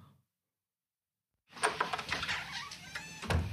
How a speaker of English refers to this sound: It also sounded like a barn door opening.